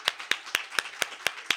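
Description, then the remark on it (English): Steady, evenly spaced hand claps, about seven sharp slaps at a brisk rhythm: women standing to give a round of applause for their sisters at a winter workshop, with no voices over it. “All right, let's stand up, sisters, and give a round of applause for our sisters.”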